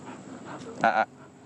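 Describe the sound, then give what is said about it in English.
A puppy named Mojo lets out one short, high whimper after a moment of soft, breathy panting; the whine is brief and clear. “he must be hitting a growth spurt.”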